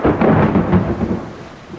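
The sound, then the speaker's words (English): A loud roll of thunder rumbles low and heavy, swelling in several pulses before fading slightly, with a steady hiss of rain underneath and no voices. “And now we really need to go. It's about to storm.”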